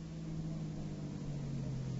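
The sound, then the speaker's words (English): A gray sedan pulling up to the curb: its engine hums low and steady, a constant droning rumble with a faint tonal whine that holds at an even loudness for the whole two seconds, with no voices. “Harry, a gray sedan just pulled up to the curb.”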